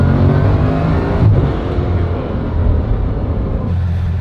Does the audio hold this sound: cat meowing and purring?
no